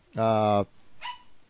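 small dog barking

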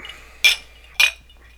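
glasses clinking

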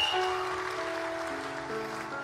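audience cheering and applauding

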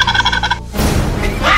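turkey gobbling

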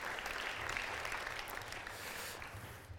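audience applause

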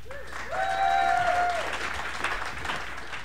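audience round of applause

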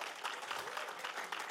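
audience clapping

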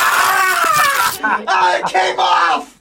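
person screaming in pain

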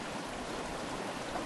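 flowing stream water

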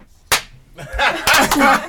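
hands clapping

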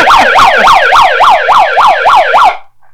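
siren sound effect

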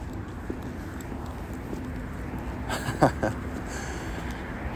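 footsteps

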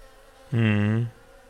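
bees buzzing

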